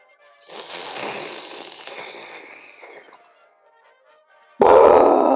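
A long, loud, raspy belch rumbles for almost three seconds. After a short silence, another loud burst cuts in abruptly at the end.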